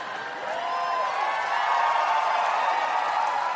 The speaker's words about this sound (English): Cheer all you want.